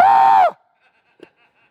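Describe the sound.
A man lets out a single loud, high-pitched scream lasting about half a second, imitating the demoniac of the Gospel of Matthew who screamed all night long in the cemetery, then it cuts off into near silence with only a faint murmur afterward.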